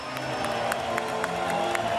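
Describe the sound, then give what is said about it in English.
A dense, roaring arena crowd cheers steadily after Steen scores to give the Blues a 2-1 lead, with sharp claps and whoops popping out of the continuous wash of noise at irregular moments. “Crowd loving it here, and the Steen line comes up huge.”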